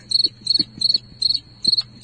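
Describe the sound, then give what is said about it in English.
Crickets chirp in a steady, regular rhythm, about six pulsed bursts over two seconds, bright, with a faint low hum beneath and no talking. “This is a bunch of crickets.”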